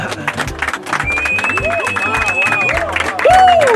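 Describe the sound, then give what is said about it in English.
A crowd at a wedding celebration claps and cheers loudly and steadily for a few seconds. Excited voices and a long whistle rise over the applause, and it ends on a swooping shout. “Make una clap!”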